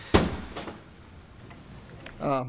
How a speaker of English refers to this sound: grabs his computer and his stuff. He slams out of the hearing room.